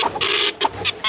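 A printer whirs and buzzes in short, rapid bursts, several passes in quick succession with brief gaps between, loud, with no voices.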